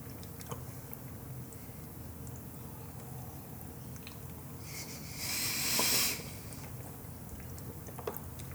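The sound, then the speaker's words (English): People drinking fizzy cinnamon Coke, with a soft, brief hissing slurp midway through an otherwise quiet stretch, low background hum and small mouth noises, no talking. “Apologies for the dead air while we're drinking.”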